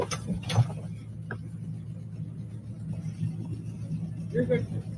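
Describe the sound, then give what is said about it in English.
A stranger yanks the door handle of a woman's car while she is stopped at a traffic light, in a couple of quick, sharp clunks near the start, followed by a lighter rattle, all over the steady low rumble of the idling car and faint muffled voices. “It's a guy, random guy, checking her car door to get in.”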